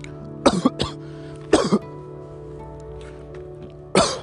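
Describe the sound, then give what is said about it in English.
Three close, loud coughing bursts: a double cough, a pair of coughs a second later, then a final harsh cough, with a low steady hum in the background and no talking. “Keep coughing.”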